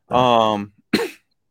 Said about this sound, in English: Yeah, I can read some. If I start coughing, I am sorry.